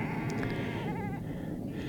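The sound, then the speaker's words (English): Sheep bleat, one wavering call standing out over a steady outdoor rumble with a few fainter bleats around it, a big flock being rounded up on a hill by a farmer and his dog. No one speaks. “in front of me, there's a great big flock of sheep, and the farmer's rounding them up”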